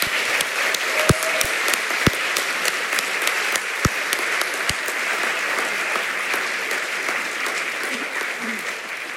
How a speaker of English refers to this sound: So can I please have a round of applause for the writers?